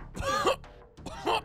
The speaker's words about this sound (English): And it's just, you just hear some more coughing.